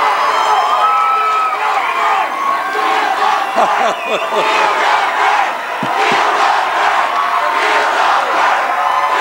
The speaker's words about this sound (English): The crowd chanting, "Feel the burn," which has become the hashtag movement for the Bernie Sanders campaign.